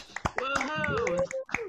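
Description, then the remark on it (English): A few sharp, scattered hand claps ring out over overlapping voices calling and cheering, the claps irregular rather than a steady rhythm. “It's like I give the episode number, we clap a little bit, and then we start to stagger after that.”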